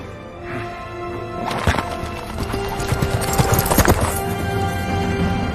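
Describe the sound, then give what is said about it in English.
Hooves clip-clop in a steady, fairly loud rhythm as a horse moves, while a horse neighs over the hoofbeats. No one speaks. “There'll be a wizard on a horse coming over the hill.”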